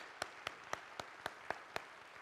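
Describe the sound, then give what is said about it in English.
Faint audience applause at Oakmont welcoming guest speaker Susan Sparks: a soft wash of clapping with a steady run of about seven sharper, evenly spaced claps standing out on top, no voices. “And now you can really clap and applaud for Susan Sparks.”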